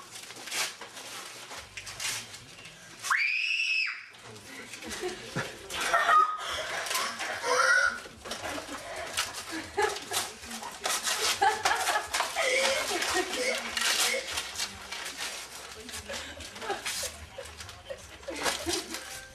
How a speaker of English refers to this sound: Yeah, so as you can hear, the scream is intense. Yes, a scream to remember.